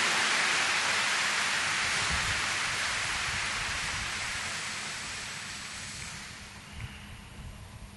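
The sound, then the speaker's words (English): A church audience applauds after a sermon, giving the Lord a round of applause, in a dense, steady wash of clapping that holds for several seconds, then gradually thins and fades out toward the end. No one speaks over it. “Why don't you give the Lord a big round of applause for this two wonderful people.”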